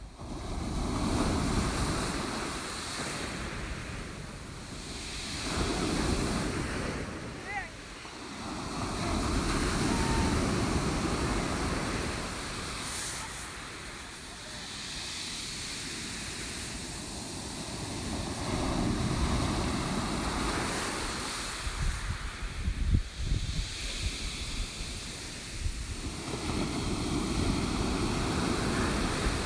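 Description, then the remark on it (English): Ocean waves crash and roll onto the shore of the Devon coast in steady surges, each swell rising to a broad roar then easing back, with a gusty wind rushing underneath and no voices. “Soak them up, because we're back at the coast with crashing waves in Devon.”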